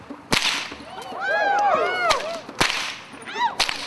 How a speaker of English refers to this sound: Now know you that when my whip cracks, it is the sound of the end of my whip exceeding 760 miles per hour. At that speed, it will cut through